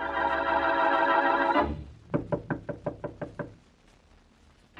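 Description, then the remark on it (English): Sustained music cuts off, then Boston Blackie raps on Mary Wesley's door with about eight quick, evenly spaced, fairly loud knocks, followed by near silence. “With him, as he knocks on Mary Wesley's door, is the dead man's sister.”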